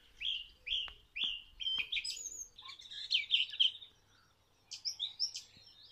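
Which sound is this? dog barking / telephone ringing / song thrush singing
song thrush singing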